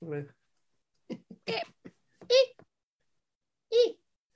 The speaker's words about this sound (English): It's a gorgeous cat butthole. He squeaked.